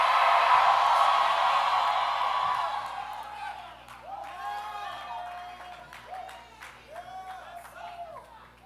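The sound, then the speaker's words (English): An audience erupts in a loud, roaring wave of screams and cheers when told to scream in the building if they are free, gradually fading and leaving scattered high-pitched whoops and shouted exclamations rising over a murmuring crowd. “If you're free, scream in the building.”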